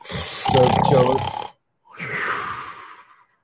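snoring

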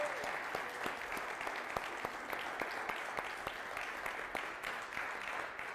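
audience applauding

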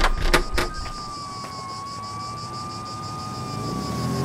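emergency vehicle sirens

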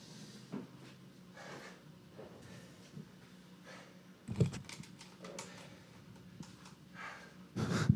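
heavy breathing

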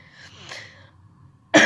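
coughing

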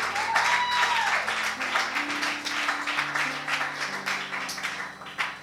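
audience clapping and applause

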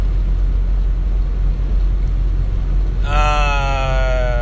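truck cabin noise

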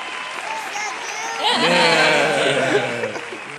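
applause sound effect

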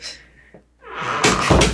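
door being shut

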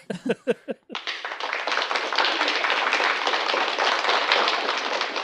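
crowd applause sound effect

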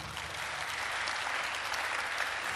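audience clapping

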